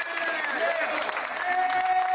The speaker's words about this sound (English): Come on, give the kids another hand clap. Come on.